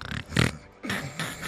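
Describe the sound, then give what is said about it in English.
A person imitates a best friend's weird snore pattern: a short snort, then a loud, low, rattling snore, a brief pause, and two long breathy rasping exhales. “And I spent the night with my best friend who has a weird snore pattern. She goes like this.”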